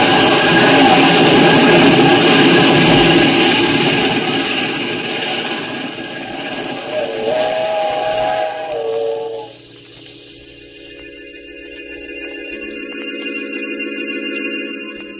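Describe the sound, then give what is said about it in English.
A steam train thunders past, a loud rushing roar with a brief whistle-like tone near the end, then it drops away abruptly, leaving a quieter, steady hum behind. “When the train had passed, I saw what was left of his body on the tracks.”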